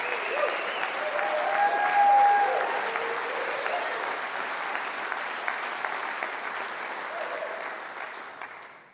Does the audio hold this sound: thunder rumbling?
no